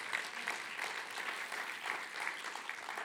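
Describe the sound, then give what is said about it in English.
A church audience claps steadily and densely for a few seconds, giving it up for Jesus, a bright, sustained wash of many hands applauding together at a fairly even level, with no clear voices standing out. “And everybody said, come on, one more time, give it up for Jesus.”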